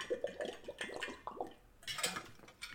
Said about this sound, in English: I apologize already, but I'm going to take a quick sip of water.